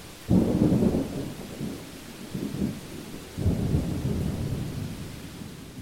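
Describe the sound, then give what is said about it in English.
Thunder rolls in two deep, heavy rumbles, each swelling suddenly and trailing off slowly, over a steady wash of falling rain in a timed storm show at a rainforest exhibit; no voices are heard. “The storm only lasts a few minutes, and ends with a thick mist obscuring most of the little island.”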